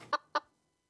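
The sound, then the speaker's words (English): Two short, sharp chicken clucks close together, clear, fading quickly into silence with no voices present. “I can hear a chicken.”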